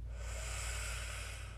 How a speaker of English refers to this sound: So take a deep breath in. Take a sip at the top, fill up.